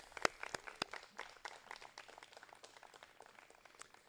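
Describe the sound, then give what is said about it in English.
A round of applause for Deacon Mel from a crowd at a church gathering, with many overlapping claps forming a steady crackling patter. A few sharper, louder claps stand out early on before it settles into a softer, even rhythm. “How about another round of applause for Deacon Mel, everybody?”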